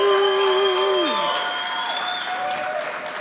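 An audience at a live band's music event claps and cheers steadily throughout, applauding the organizer, with a held, whistle-like tone that bends downward in pitch about a second in, over the dense, even roar of applause.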